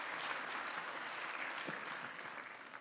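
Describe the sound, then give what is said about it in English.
An audience breaks into steady applause, a dense, continuous patter of many hands clapping at fairly even loudness, tapering slightly toward the end with no one speaking. “Yeah, that's worth an amen and applause.”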